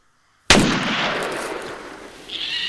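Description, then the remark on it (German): A single loud, sharp crack of a dry branch snapping as someone steps on it off the paths in a snowless hollow breaks the silence, followed by a lingering rustling hiss that slowly fades, with a brief higher-pitched rustle near the end. “trat Klößchen auf einen Ast. Krachend zerbrach das ausgetrocknete Holz.”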